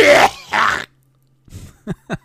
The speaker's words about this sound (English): But coughing makes it better, though. I have a weak left lung. I will cough if I try that.